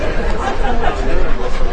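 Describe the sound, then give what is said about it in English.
A steady, dense murmur of many voices talking at once, with no single voice standing out, holding at an even, fairly loud level throughout. “That's a hot crowd, man.”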